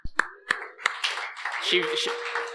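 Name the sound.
audience applause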